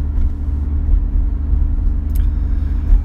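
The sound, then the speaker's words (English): A steady, loud low-frequency engine rumble fills the inside of a moving car, droning continuously with slight fluctuations and no voices present. “Back in the loud-ass car.”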